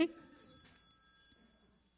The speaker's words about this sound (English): it's okay. That's Jerry's phone.